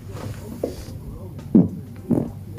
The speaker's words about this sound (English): First one is a public restroom at work. Loud and amazing acoustics. You can't beat that fart.